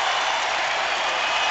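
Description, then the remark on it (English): A dense, steady roar of a basketball arena crowd on its feet, cheering as Illinois leads Ohio State 70-57 in the final seconds of the University of Illinois' first Big Ten tournament title, loud and unbroken, with no distinct voices or words standing out. “Listen to the crowd.”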